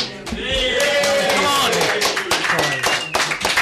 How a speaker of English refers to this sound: Round of applause for the listener.